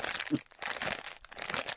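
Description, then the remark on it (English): Crinkly cellophane wrapper of Brock's candy being scrunched and handled, a continuous dry crackling with brief pauses and bursts, heard alone with no voices. “You know what that's called, don't you? What? Rustling.”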